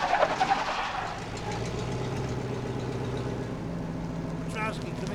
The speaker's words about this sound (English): Okay, park the truck. Don't park. There's a railroad tie in the back. Pull it out and slide it in front of the back tires. It'll come to a full stop.